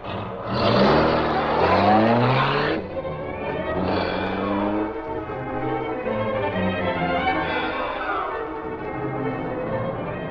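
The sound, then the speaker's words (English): A car engine roars up loudly in a rising rev, then drops back and keeps droning steadily at a lower pitch as the vehicle pulls away, with no voices. “Go out through the side alley of the avenue, Cato, then head for the vicinity of the Sentinel building.”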